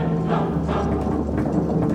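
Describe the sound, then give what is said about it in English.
Horse hooves clip-clop in a steady, quick rhythm, several sharp knocks over a dense, continuous background rumble, fairly loud. “Prepare for battle! On our horses”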